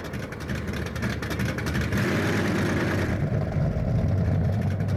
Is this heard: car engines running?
yes